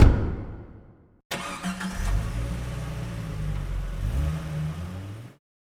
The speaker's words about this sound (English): Oliver watched him go, and then opened the door to his car.